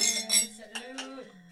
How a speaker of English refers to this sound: 21st cheers. Birthday cheers. Totally. Yeah. Birthday cake clink, shots. Clink, clink.